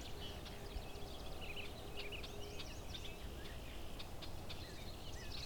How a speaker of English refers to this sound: Some red-winged blackbirds here too.